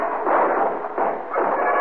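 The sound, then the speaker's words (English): A rapid volley of gunfire as every gun in a room opens up on a man standing in a doorway: several loud overlapping bursts of harsh, crackling noise crowding together over about two seconds with no pause between them. “Every gun in the room opened up on him.”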